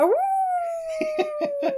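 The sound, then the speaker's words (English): A wolf howls once, rising quickly and then holding a long, steady tone. Four short, sharp barking bursts punctuate the end of the howl. “And then he also has a nice little sidekick. It's his wolf devil.”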